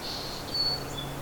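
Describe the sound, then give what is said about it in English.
Thin, high yellow-rumped warbler calls, a few short piping notes over a soft outdoor hiss, with no talking. “Oh, yellow rump warbler.”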